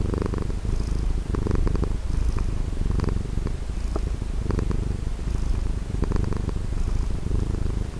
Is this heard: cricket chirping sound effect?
no